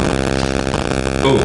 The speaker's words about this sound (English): No, it's just. Dirt bike. Yeah, man. I'm I'm gonna have to go back and listen and make sure like it's not picking this shit up. I hope it's not.